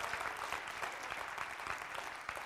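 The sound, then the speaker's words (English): An audience claps together in a steady, dense round of applause, many overlapping hand claps forming a continuous crackling wash with no voices on top. “In fact, give those that are listening to podcasts right now a round of applause.”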